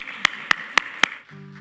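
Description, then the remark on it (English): Four sharp, evenly spaced claps ring out in a quick steady rhythm as people applaud in unison, then give way to a low, sustained humming tone. No one speaks. “Let's applaud this day, okay?”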